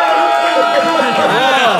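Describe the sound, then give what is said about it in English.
An audience cheers and shouts together to vote that Tusken Raiders would beat Vogons in a fight, a dense, steady wash of many overlapping voices that stays loud for the whole short stretch, with higher yells rising and falling through it. “If you believe that Tuscan Raiders would beat Vogons in a fight, make some noise now.”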